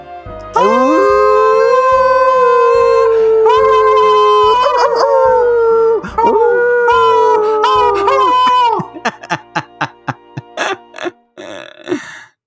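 Long, wavering howls rise and fall loudly over a steady low thumping pulse, then give way to a quick series of short, sharp yelps near the end.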